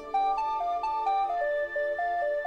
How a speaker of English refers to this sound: What's that? It's Taint Hammer's Blackberry. He must have dropped his phone in the commotion of the escape. Let's just see what we have here. A text from Barry.